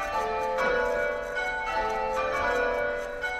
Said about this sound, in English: The bells are loud. And some people find them obnoxious, and I can't fault them for that. It's meant to be a background sound. It's, bells are ringing. Oh, yeah. I don't have to pay attention, but I should make my way to church now.